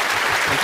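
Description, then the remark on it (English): A burst of applause for a guest from a sunglass shop on the show Saugatuck on Sunday, steady and fairly loud, with many hands clapping in a dense, continuous wash of sound and no voices over it. “a big round of applause”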